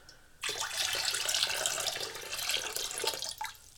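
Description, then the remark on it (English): Sugar water pours steadily into white grape juice in a punch bowl for about three seconds, a bright splashing stream that starts abruptly and tapers off near the end. No one speaks. “I'm going to go ahead and mix in my sugar water.”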